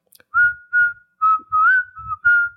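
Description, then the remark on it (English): A clear whistled tune from a film soundtrack, six short phrases, each a steady, slightly wavering note with small pitch bends, separated by brief pauses, with faint low rumbles underneath and no voices. “But I assume that they don't hear that whistling.”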